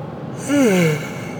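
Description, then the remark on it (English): A single yawn: a breathy, voiced sound that slides downward in pitch over about half a second, with no talking around it. “I'm fucking going to yawn.”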